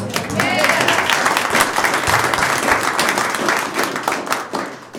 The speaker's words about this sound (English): I just deserve applause.